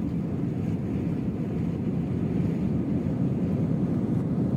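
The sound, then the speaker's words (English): A steady, dense low roar of an airplane speeding down the runway for takeoff, heard from inside, holding an even loudness throughout with no voices. “He smiled and grabbed my hand as the plane started speeding down the runway.”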